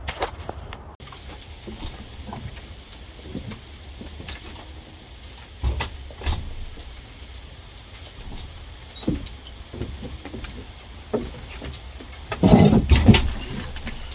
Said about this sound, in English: It's also raining. You can probably hear that. Pretty nice.